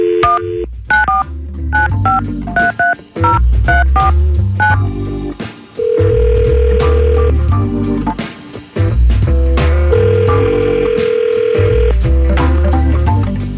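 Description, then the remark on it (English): A rapid string of touch-tone dialing beeps, then two long, steady ringback tones as the call connects, all loud over a busy background bed with no talking, as a radio station calls a woman. “But we gotta try to get her on the phone for you so you can figure things out. We're gonna try to call her”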